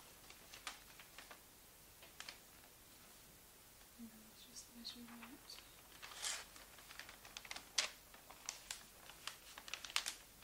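Quiet crinkling of wrapping paper being handled and folded while wrapping a gift, with irregular crisp crackles and soft rustles that grow a little busier toward the end; a faint murmur surfaces briefly midway.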